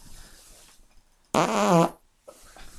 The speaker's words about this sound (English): Fart mic.